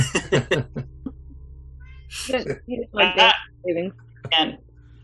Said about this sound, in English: Guys, I found like a little, there's like a game trail, like it's probably from deer and stuff, but I hear a cat.